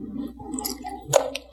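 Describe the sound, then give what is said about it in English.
Wet mouth sounds of someone sipping water and swallowing, with a soft slurp and a sharper gulp near the end, no talking. “Man, I'm going to take another sip of water because my words are stuck.”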